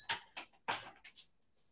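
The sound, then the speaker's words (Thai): A door being opened loudly: a quick run of sharp mechanical clunks and rattling clacks, about five bursts in under two seconds, harsh and bright, with no voices. “การเปิดประตูที่ดังมากนะครับ”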